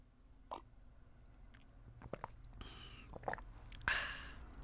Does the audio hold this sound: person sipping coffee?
yes